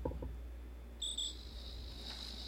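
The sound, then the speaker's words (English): Crickets chirp in a steady, high-pitched trill, with a sharper burst of chirping partway through, all over a low background hum. No one speaks. “I like to think that the Crickets, by the way, they were the world's first musicians, right?”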